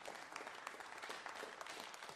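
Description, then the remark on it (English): A church audience breaks into applause, many hands clapping in a dense, steady crackle that holds at an even level for a couple of seconds, with no voices on top. “Come on, somebody should be clapping on that.”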